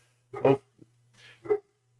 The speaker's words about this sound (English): I will have to say this one more thing before we fully get in is you may hear our dogs, because daylight savings times happened. It's still light out. And whenever anything happens outside, our dogs must protect our entire house